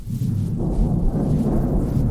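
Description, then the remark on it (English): A deep, continuous rumble of thunder rolls steadily for a couple of seconds, heavy in the low end and fairly loud, with no voices over it. “Weird. There's no storm.”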